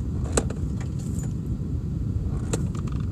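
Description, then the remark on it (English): Keys jangle in short metallic bursts as a knee hits them, a few brief clinks over a steady low rumble of a car driving, fairly quiet. “I hear your knee hitting your keys.”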